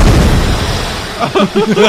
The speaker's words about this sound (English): Let's get a nice big explosion. Oh, this is the one with the door, right? He got the scar? I think so. Watch. What the fuck? That was a whole car door, bro.